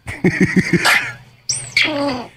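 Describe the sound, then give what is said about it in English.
An annoyed squirrel call played from a TikTok video: four quick, throaty chuffs in a row, a harsh hissing burst, then a squeaky, buzzy whine after a brief pause. No one talks. “That's how alarm, a squirrel sounds?”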